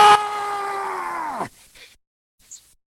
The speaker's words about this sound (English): He looks up to the sky and lets out a warrior scream. No!